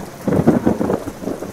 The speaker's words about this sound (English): I can remember as a kid being terrified of thunderstorms.